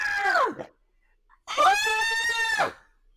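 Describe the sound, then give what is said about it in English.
A voice imitates a fire truck siren in two wailing bursts: a short falling cry, then a longer, loud sustained wail that bends up and back down before cutting off. “You got a fire truck engine sound.”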